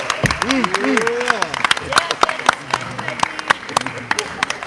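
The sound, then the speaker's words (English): A crowd claps steadily after a player announces committing to Kansas State, with sharp, uneven hand claps throughout, mixed with loud whoops and cheering voices rising and falling over the applause. “And then the clapping goes on, but of course, after the clapping, we do hear some from you know, the folks.”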